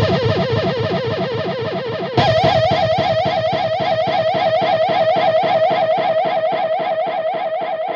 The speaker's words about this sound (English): And also I used some like more psychedelic effects with the echo, like.